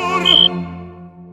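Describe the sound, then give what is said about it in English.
A quiet cricket, using a leaf as a megaphone-like baffle to sound like a loud cricket, gives one brief, high, buzzy chirp made of rapid pulses, over a steady low tonal hum that lingers and slowly fades after the chirp ends. “And here, Ritik has found a quiet cricket pretending, using this leaf megaphone thing to disguise itself as a loud one.”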